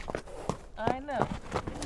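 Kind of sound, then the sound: animal, horse moving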